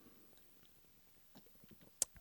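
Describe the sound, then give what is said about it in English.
Quiet sipping of an Easy Eddie drink with soft wet mouth sounds and small swallows, then two sharp clinks near the end, like a glass or can being set down. “Take another sip of Easy Eddie.”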